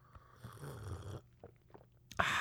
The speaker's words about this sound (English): Pardon me, I'm going to have a little sip of coffee.